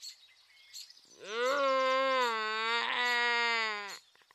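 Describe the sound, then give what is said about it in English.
A creature lets out one long, loud wailing cry lasting nearly three seconds, its pitch rising slightly and holding steady before cutting off, preceded by faint little chirps. “The sound is unmistakably crying”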